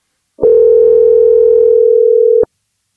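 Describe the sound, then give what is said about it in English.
A single ringback tone on an outgoing phone call: one steady, loud electronic tone holding for about two seconds, starting and stopping with a faint click, with no voices. “So now it's time for a segment of the podcast called Phone a Friend, where we do just that. Phone a friend.”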